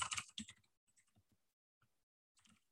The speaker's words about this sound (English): Sorry, I'm typing this up.